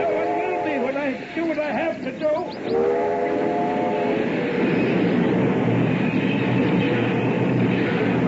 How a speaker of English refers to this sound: stopped the train.